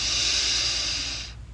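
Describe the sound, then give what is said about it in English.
A single long, steady breath drawn in, a broad airy hiss lasting over a second before cutting off, with no talking. It is an inhale in a bubblegum breathing exercise, done with the hands on either side of the mouth. “Put your hands on either side of your mouth and inhale.”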